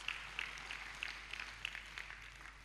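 An audience applauds, many hands clapping together in a dense, steady crackle that stays fairly soft throughout, with no voices over it.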